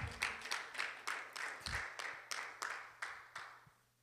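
A group claps in steady, even rhythm for a person who brought a Bible up front during a talk on James chapter 4, about a dozen crisp beats over four seconds, a moderately loud round of applause with no voices over it.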